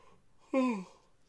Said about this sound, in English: I've been fighting that yawn for 5 minutes.